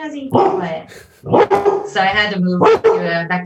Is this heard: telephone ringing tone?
no